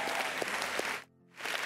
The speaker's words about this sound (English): Now let's clap with the angels in heaven that are throwing a party right now.